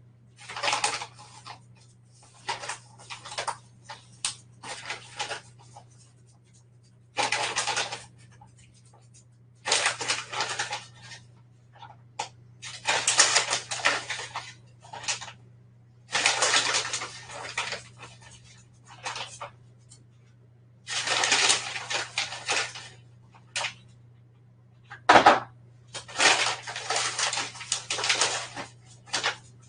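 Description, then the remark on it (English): Repeated dry scooping and scraping as 2 cups of organic coconut flour are measured by the cupful into a bowl, in irregular bursts over a low steady hum, with no talking. “So I have, I'm going to use 2 cups of organic coconut flour.”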